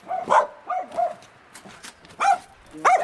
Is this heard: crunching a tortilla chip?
no